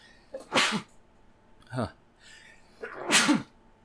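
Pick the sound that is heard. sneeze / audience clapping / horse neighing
sneeze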